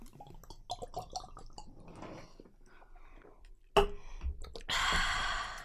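Someone gulps down a shot of vodka from a Smirnoff nip: a series of wet, quiet swallowing sounds, then a sudden sharp click and a loud, breathy gasp exhaled afterward.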